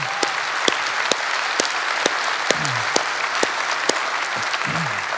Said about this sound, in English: Whether you're worshiping online or at our West Campus or maybe here at Newburgh, let's all give our moms a big round of applause.